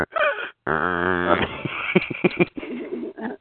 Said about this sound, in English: Rambo snoring. What is it? Rambo is snoring. I can just hear him.